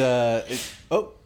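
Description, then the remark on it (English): A single sneeze: a drawn-out, pitched voiced intake followed by a sharp, breathy burst of noise, then a brief voiced catch at the end. “Bless you.”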